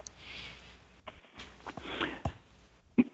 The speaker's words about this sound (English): Excuse me, I just had a cough.